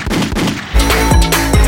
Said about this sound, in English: So two gunshots for me.